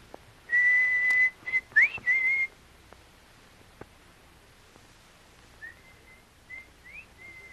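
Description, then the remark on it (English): A loud, steady signal whistle blown by a man in the jungle sounds for about two seconds, broken into short blasts with quick upward slides. After a pause, a fainter whistle imitating his answers in several brief bursts. “Please, …, please whistle.”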